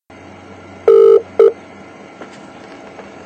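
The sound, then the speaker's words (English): Two loud, steady electronic phone tones in quick succession, a longer beep followed by a shorter one, as a telephone number is dialed to call MI5, over a faint background hum with no talking. “the only person, only one instance that I know of where anybody attempted to do anything about it was a man who put a phone call into MI5.”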